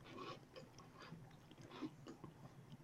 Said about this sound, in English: Yes, we need to hear that crunch, and then I'll, cheers, take a, we'll take a bite at the same time.